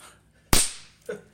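A single loud, sharp hand clap rings out on its own with a quick fading tail, followed a moment later by a softer, brief knock-like sound.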